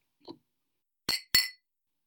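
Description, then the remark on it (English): Beer glasses clink together twice in quick succession in a toast, bright, after a soft brief knock; the ringing tones fade quickly into silence with no talking. “I've not ever had a lunch beer in my life. Cheers.”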